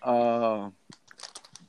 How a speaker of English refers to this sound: And wait, where did you get this resource from? Because I see that you're scrambling paper. Daily News? New York Post? Don't worry. The New York Times. The Daily News.